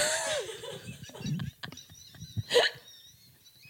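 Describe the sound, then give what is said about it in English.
A dog with a cold gives one short, sharp sneeze that sounds surprisingly human, a quick explosive burst with faint rustling and murmur around it. “That was the most human sneeze I've ever heard a dog make.”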